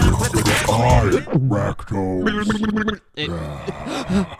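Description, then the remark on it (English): Someone noisily slurps and gurgles a sip of an elderflower drink in their mouth to aerate it, a wet, bubbling sound with a throaty hum, running for a few seconds, pausing briefly, then starting again. “Take a little sip and just tell us when you go blind. Okay, no, I'll describe the taste to you as it goes down. We got to aerate it.”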